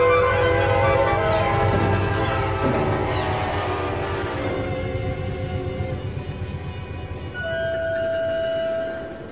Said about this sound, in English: The train was coming closer. I could hear its bell, its cry, its whistle crying.